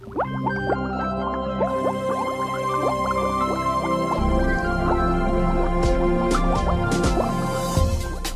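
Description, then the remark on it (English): Bubbling liquid gurgles steadily and loudly up close, a dense stream of rising, popping bubbles with a low, humming undertone throughout, and no voices. “When you hear that bubbling sound, get ready for another episode of Truth in the Test Tube.”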